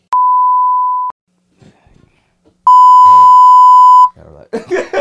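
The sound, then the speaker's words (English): Two loud, steady, high-pitched censor bleeps, each about a second long, with a short pause between. The second bleep masks a spoken word, and a man resumes talking right after. “Yeah, I'm gonna have to blank that.”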